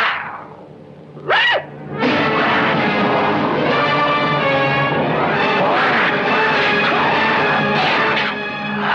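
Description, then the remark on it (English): A man imitates a wolf: a brief rising-and-falling whine, then a loud, rough, continuous growl with shifting pitch that lasts about seven seconds. No words are spoken. “A guy growls like a wolf.”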